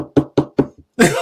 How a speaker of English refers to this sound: and that is the weirdest shit to have Kanye West being able to come and knock on your door at any time that he wants for any bullshit.